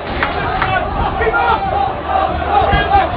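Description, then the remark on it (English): A stadium crowd of Wolves fans roars and shouts in a dense, sustained mass of voices, loudly demanding a red card after Jota is tripped in a match against Crusaders. The noise is steady and unbroken, with a few louder surges. “Well, you can hear what the Wolves fans think. They want red.”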